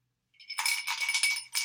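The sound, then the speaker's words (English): A run of bright clinks and rattles from an empty glass, fairly loud, ringing on for over a second with a final clink at the end. No voices. “Empty glass. That's an empty glass, guys.”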